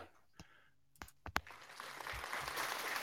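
A few scattered, slow claps ring out one by one, then build into a fuller, steady wash of applause that continues to the end.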